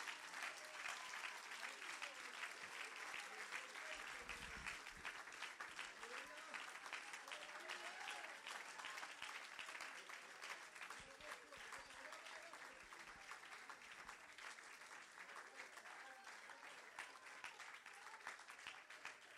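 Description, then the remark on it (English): A church audience claps steadily and loudly for about twenty seconds in praise, celebrating ten years, a dense unbroken wash of applause, with scattered voices shouting and cheering underneath that fades slightly toward the end. “Clap your hands and give God some glory of how far we've come.”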